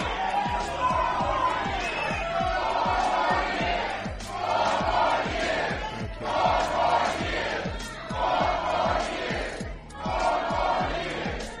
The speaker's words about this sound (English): That is a black crowd as Trump is introduced saying 4 more years.